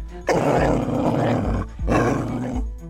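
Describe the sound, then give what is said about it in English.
A dog growls loudly in two long, rough, snarling bursts separated by a brief pause, with no talking over it. “Good dog.”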